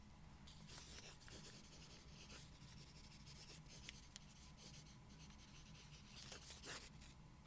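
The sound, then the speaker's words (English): A lead pencil writing words on paper in steady strokes, with brief pauses between bursts of writing, soft and intimate with no voice. “The next ASMR trigger to test out is writing. So I brought with me my lead pencil, which I love doing my journaling with.”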